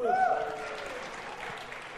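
A short burst of group applause: dense, steady clapping that holds at an even level for about two seconds, with a brief rising vocal whoop or cheer at the very start.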